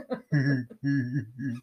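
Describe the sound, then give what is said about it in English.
A dog barks three times in quick succession in the background, each bark loud and strongly voiced, with short pauses between them. “And what is a podcast without my dog barking in the background?”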